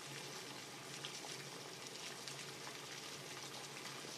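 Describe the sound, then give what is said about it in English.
Water boils with a Diva Cup in a pot not used for cooking, a steady, dense bubbling hiss that holds evenly from start to finish. It is fairly quiet, and no one speaks over it. “She's going to put the boiling hot diva cup inside of her.”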